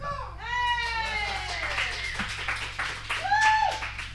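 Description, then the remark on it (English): Steady applause with dense, rapid clapping throughout, mixed with high, sliding whoops and cheers that rise and fall over the crowd noise. “Hold for applause.”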